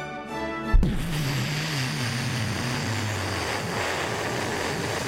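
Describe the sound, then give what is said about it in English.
A sudden loud whoosh cuts off a brief steady hum as a door blows off a Boeing 737 MAX 9 in flight, followed by a continuous roaring rush of wind and engine noise through the opened airplane cabin, with no one talking. “Today's episode, what it sounded like on the plane when the door whooshed off the plane.”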